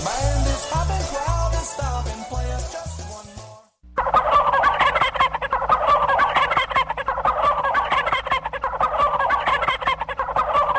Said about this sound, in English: Well, the turkeys have arrived, Christine Mary.